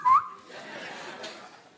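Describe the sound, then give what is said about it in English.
A person gives one short, rising whistle, bird-like and parrot-style, loud, followed by a low murmur of background noise. “When your landlord comes and whistles, then you also whistle.”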